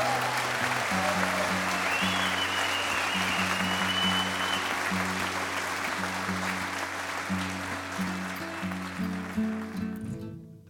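A crowd claps loudly and steadily for about ten seconds, a dense wash of applause that thins slightly near the end, with low sustained instrumental notes humming underneath.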